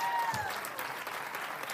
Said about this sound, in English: In the name of Jesus, give a Lord a hand clap.